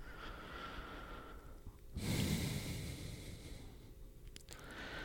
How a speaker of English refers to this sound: And I just breathe. And I just keep breathing. And I invite you to breathe.